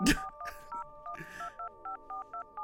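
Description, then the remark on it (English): A telephone rings with a rapid, steady run of electronic two-tone beeps, clear, after a few brief bursts of voices at the start. “Oh, David, friend of the show, says pick up the phone.”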